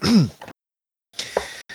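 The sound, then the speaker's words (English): A voiced cough with a throaty rasp, followed after a short pause by a couple more rough, breathy coughing bursts. No speech. “That cough sounds very COVID-y to me.”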